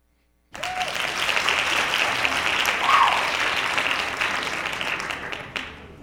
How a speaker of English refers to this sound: Hand claps.